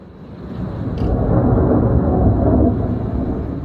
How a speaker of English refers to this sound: Ooh, that is angry. We've already got a preview of what we can expect. The Santa Rosa Fire Department posted this video last night of a thunderstorm, and take a look at the lightning there.